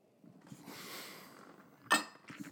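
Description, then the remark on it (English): A soft, breathy swishing gives way to one bright, sharp clink of glass as someone takes a little drink of water, followed by a few faint taps and rustles. No one speaks. “I'm going to have a little drink of whiskey. All right, a little drink of water.”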